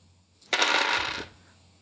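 Dice clatter and tumble across a hard tabletop in one quick roll lasting under a second, rattling briefly before settling into quiet. No one speaks.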